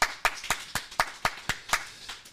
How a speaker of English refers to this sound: That was a great round of applause. Way better than last week.